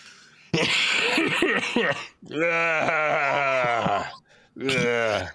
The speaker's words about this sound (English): sitting there miserable, having to cut out all our coughs. No, because I muted most of mine except that one because we were in a break.